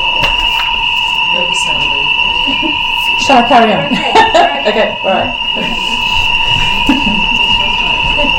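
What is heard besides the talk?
alarm going off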